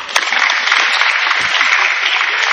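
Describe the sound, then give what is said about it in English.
An audience of people who say they are on the introverted side claps on request, many hands together in a dense, steady burst of applause. The continuous crackling wash holds at an even, fairly loud level throughout, with no talking. “How many of you are more on the introverted side? Let me see your hands. Clap for me.”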